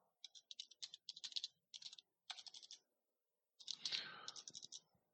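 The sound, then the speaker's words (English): Rapid bursts of typing on a computer keyboard while adding to notes, clustered clicks in uneven runs with short pauses between them, fairly crisp, with a faint murmur of talk underneath. “I'm adding a lot to my original notes, and I'm typing.”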